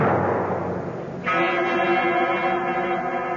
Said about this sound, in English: I'm standing in front of the great door of Carriclena, and I know that everything's going to come clear at long last. I reach out and pull the bell. Even the bell is familiar, although I cannot quite place where I've heard it before.